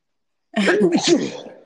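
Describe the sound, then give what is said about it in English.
A single sudden sneeze bursts out of silence, loud, with a voiced edge that trails off over about a second. “Yeah, bless you for real.”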